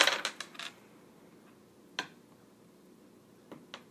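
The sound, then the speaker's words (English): Four dice are rolled to hit, clattering onto a hard surface in a quick burst of rattling clicks, followed by a few isolated taps as they settle, with no one speaking. “So take your full dice of six, take two off of it, so you're rolling four dice to hit.”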